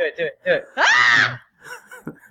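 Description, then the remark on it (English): A woman lets out a short, loud, shrill performed blood-curdling scream on request, lasting about half a second, sandwiched between brief bits of speech. “Give me a blood-curdling scream.”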